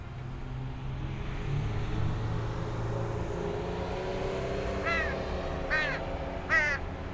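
A crow that is regularly fed caws three times in the second half, harsh calls spaced about a second apart, over a steady low rumble like passing traffic or an engine.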